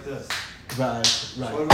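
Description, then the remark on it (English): Four sharp, light claps on the back of a hand, spaced unevenly about a third to half a second apart, with a voice talking underneath between them. “You know, on the back of your hand, you can clap, okay?”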